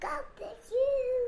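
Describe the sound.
A child's voice imitates a rooster crowing, saying cock-a-doodle-doo: a few short syllables, then a drawn-out, sing-song final note, fairly loud.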